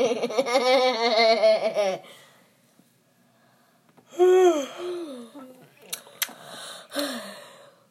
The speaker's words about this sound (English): Apparently yawns are contagious. Are you yawning? I'm not. I'm, believe it. More yawning.